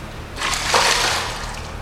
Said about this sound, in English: lifting its now normal-sized self from the waters flooding the stairs at our backs.